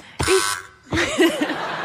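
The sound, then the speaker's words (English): A quiz buzzer gives a short, harsh, steady buzz, followed after a brief gap by a longer, rougher burst with warbling, wavering tones. “You buzzed.”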